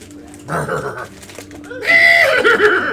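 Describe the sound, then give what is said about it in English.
A person does a vocal impression of a storm horse's whinny, a rising, quavering neigh that grows louder and brighter near the end, with no words spoken. “The storm horse canters around.”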